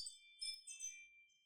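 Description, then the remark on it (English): A soft, high-pitched chime rings with sustained bright tones. Two shimmering accents swell briefly over the steady ringing, then it fades into a quiet, lingering tone, with no voices. “It's a good chime, too, to it.”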